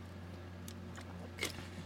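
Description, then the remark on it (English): A quiet sip of water: a couple of soft, brief slurping clicks, the second one louder, over a steady low electrical hum, with no talking. “I was, here, let me take a sip of water.”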